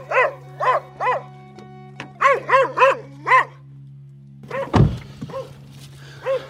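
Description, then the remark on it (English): A dog barks at a door repeatedly in short, sharp bursts, a quick run of barks, a pause, then another volley, with a heavy thump partway through and a low steady hum underneath. “One dog does not like me.”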